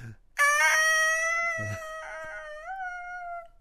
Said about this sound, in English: I do like the concept that also, if one falls, it just screams all the way down. Yeah. It's like the sound of a falling bomb, except it's a goat scream,